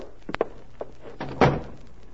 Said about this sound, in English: Close that door